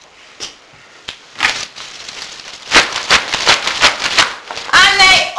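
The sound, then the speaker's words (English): A cupboard bangs against a door and cups and saucers rattle in a burst of sharp, irregular knocks and clinks. The clatter grows busier and louder, with a brief high chirping near the end. “and he pushed Daisy against the cupboard, which banged against the door and rattled the cups and saucers.”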